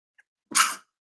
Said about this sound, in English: Y'all about to sneeze.